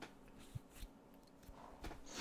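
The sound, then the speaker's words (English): A few quiet, irregular key taps on an old Commodore 64 keyboard, each a short dry click separated by brief pauses, with no voices. “You hear a tap of a few keys on an old Commodore 64 keyboard.”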